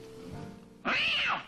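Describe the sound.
One loud, drawn-out meow that rises and falls in pitch, a convincing human imitation of a cat, arriving abruptly after a low, murmuring background.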